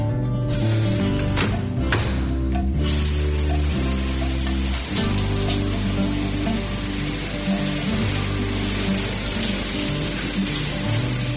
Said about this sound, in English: Mom, the shower's cold. Oku ha? The water's momoko, mom. I think you should check the gas bottle.